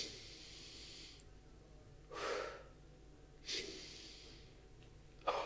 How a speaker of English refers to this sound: But this was like a whole hour, 11 rounds. I didn't even think it was 11 rounds of this breathing where you breathe in.